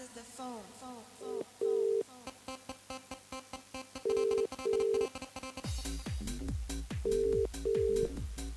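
A telephone rings in the classic double-burst pattern, three pairs of steady electronic tones spaced evenly apart, over busy background music and voices, as a call comes in to a live charity fundraising phone-in show, the Night's Rival.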